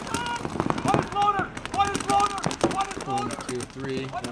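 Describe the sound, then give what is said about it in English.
A rapid string of sharp video game gunshots, a replay of one player shooting another, cracks out in bursts over a few seconds, mixed with excited voices talking and shouting over the shooting. “I only shot him like 3 or 4 times, right?”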